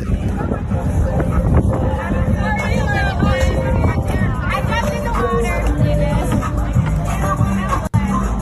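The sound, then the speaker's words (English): A bigger boat with multiple people aboard out on open water, with steady wind buffeting the microphone and the constant rumble of motion, while several people chatter indistinctly throughout. “This is his boat that he was bragging about.”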